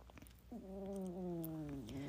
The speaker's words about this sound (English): And that would be my cat snoring, if you could hear that.